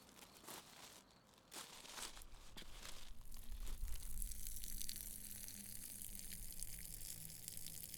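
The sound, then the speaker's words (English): A steady stream of urine from a man relieving himself in the woods spatters onto a boot, a continuous crackly, hissing splash lasting several seconds, fairly quiet, with no one speaking. “Urine splashes on a boot.”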